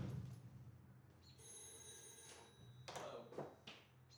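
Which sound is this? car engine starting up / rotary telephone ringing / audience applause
rotary telephone ringing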